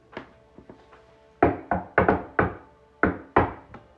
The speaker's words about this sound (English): At the factory front door? I knock. How do you knock?